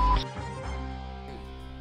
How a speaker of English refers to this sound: That's our printer. Oh, because I'm like, why is you still clicking? Well, that's the printer.